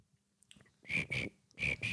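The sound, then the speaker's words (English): A person imitates cricket chirping with their mouth: four loud, buzzy, high-pitched chirps delivered in two quick pairs with a short pause between, and no talking alongside. “Usually, when there's like a bad joke, I try to do the cricket sounds with my mouth.”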